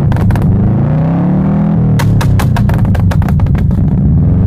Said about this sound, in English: But right now, it's probably a 2004 Blob-Eye WRX STI. You know, things about it. I like the rumble of the boxer engine in those cars.